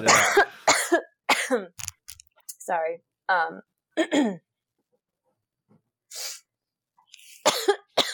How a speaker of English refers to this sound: So, oh my God, I'm coughing. Don't worry about it. Take a second.